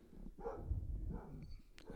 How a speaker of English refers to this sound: Dog barking in the backyard.